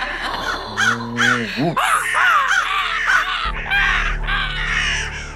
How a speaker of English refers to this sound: And as she laughs, it begins to take on an echoing quality where it's redoubling on itself and redoubling on itself. And then it's out of sync and falling into a cacophonous chatter that resembles a flock of crows.